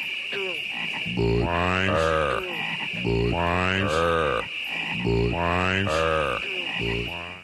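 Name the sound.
frogs croaking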